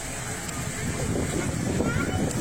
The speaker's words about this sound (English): It's kind of windy today, too.